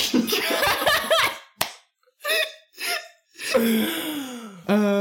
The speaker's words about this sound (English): Sound of someone slapping someone, you know? I slap my poor brother.